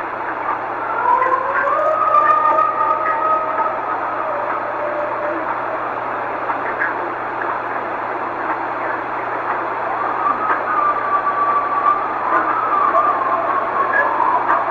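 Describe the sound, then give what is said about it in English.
Coyotes howling back and forth: wavering, high pitched calls that rise and slide, in a burst early on and another near the end, over a steady background hiss. No one speaks. “Okay, so there at the end, it sounds like it's some sort of animals howling at each other, which the Mohican State Park Rangers believe that the sound could come from an alpha male coyote calling its pack.”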